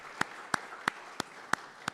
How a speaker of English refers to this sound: I think a round of applause is in order for this group of individuals.